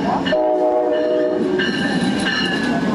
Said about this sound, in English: The Amtrak train to Chicago stops here three times a day.